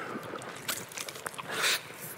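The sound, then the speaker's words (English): Someone drinks from a new water bottle: a couple of seconds of wet sloshing and gulping, with short airy bursts and a louder gurgle near the end, and no talking. “New water bottle is killing me.”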